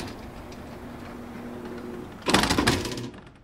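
A steady hum gives way to a sudden, loud whooshing rush as a building's front doors slide open while people enter, lasting under a second before fading back down.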